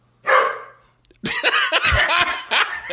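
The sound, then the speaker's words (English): A dog barks once, loud and close, then after a brief pause breaks into a busy stretch of rapid, overlapping barks and yelps that continues until the end. “You just came in, dog.”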